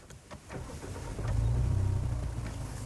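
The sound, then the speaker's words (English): A car engine cranks with a few quick clicks and catches, settling into a steady low rumble that swells and holds, with no talking. “All right, let's fire this baby up and hit the road.”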